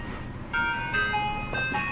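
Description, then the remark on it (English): An ice cream truck jingle plays a bright, tinkling electronic melody of sustained tones, starting after a brief lull and continuing steadily at moderate volume with no talking. “They have an ice cream truck at the parents' campsite.”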